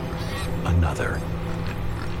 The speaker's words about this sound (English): From the other end of the flaying room came a soft squeal, followed by another.